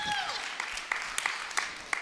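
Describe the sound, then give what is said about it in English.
A church audience claps together during a sermon, a dense wash of applause punctuated by steady, evenly spaced louder claps. “Like when you authentically meet Jesus, somebody's about to clap. I'll let that happen. Go ahead.”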